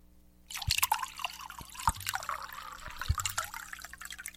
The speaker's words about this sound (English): Thank you for filling my wine glass. Perfect.